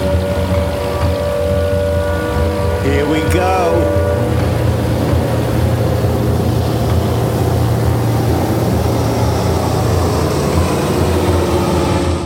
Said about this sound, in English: Patrol boat turns sharply toward the airfield and roars off, its searchlight just grazing the Sikorsky.